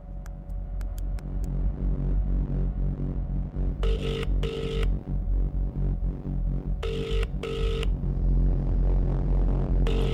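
A phone line rings out on an outgoing call: two double-pulse ringback tones, evenly spaced, heard over a steady low droning hum with no one speaking.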